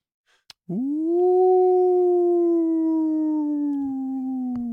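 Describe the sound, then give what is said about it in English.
A voice imitates a long, deep howl: one sustained, steady tone that swells slightly, then slowly sags in pitch for about four seconds, loud, with no talking. “So as you are on the back of elk and coming down an area between two large tumbled piles of rock, you hear some movement behind the stones and you hear a long, deep howl.”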